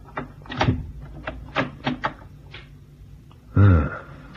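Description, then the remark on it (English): A cabin door handle on an Oriental-built ship with carved woodwork rattles and clicks in a few quick metallic jiggles, followed by a short pause and then a louder creaking clunk as the door shifts. “And now's my chance to try the door handle.”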